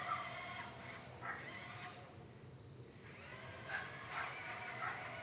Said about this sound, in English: I think that's an RC car. Or an electric screwdriver.